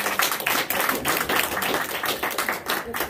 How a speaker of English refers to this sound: Let's get the Lord a hand clap for praise. Amen.